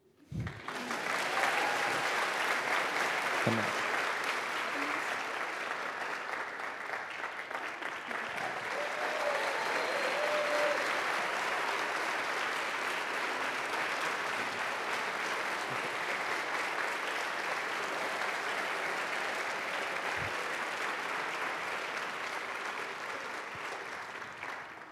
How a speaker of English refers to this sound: We're going to be introducing our panel right now. And I guess, we have a round of applause for our panel.